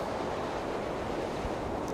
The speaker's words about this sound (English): Ernest peers over the hood of the car as more wind whips around them.